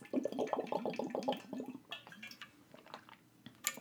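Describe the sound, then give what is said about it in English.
Wet gulping of a person drinking water, a quick series of rhythmic swallows at first, then softer sips and small mouth clicks. Fairly quiet, with no talking. “Hold on, taking a drink of water.”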